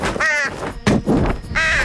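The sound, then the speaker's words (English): Two loud, harsh caws from a pet crow named Thorn, one near the start and one at the end, with a rough, scratchy squawk in between. “And last but not least, it is I, …, and my crow, Thorn, Thornius.”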